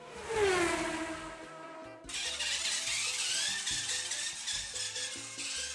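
A small electric motor whines with rising, falling pitch, then shifts into a steady high buzzing whir with rapid fluttering variations, like a toy car zipping around. No talking.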